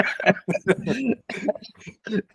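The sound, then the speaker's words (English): Fairly loud bursts of chuckling from a person with emphysema break into a run of rough, repeated coughs, the laughter and hacking blending together in uneven spurts with brief pauses between them. “I hate when you make me laugh because I cough.”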